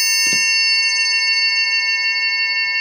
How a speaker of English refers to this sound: put his hand in the triangle and just waved it up and down. Waving the air around. That is brilliant.